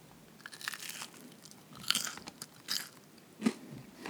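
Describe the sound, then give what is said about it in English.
Crunchy chewing of a cold fried fish sandwich, with a series of sharp, crackly bites and munches repeating irregularly over a few seconds, no talking. “Very crunch.”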